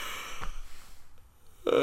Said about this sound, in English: Oh dear, tell you, I'm absolutely knackered. I really am sorry. How professional is this? I am fucking yawning on my own podcast.